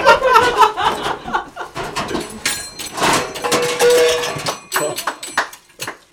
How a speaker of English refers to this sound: I'm going to get a pan, so there's going to be some pan noises while I just talk about... Just get the pans first!